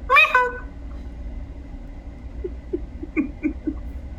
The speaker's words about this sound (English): Squeaky gavel of justice.